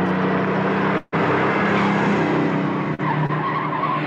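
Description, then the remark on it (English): Loud, continuous engine roar with screeching tires and skidding from a film car chase, briefly cut by a sudden drop to silence before the revving resumes. “And they get into a whole car chase and a whole bunch of other shit.”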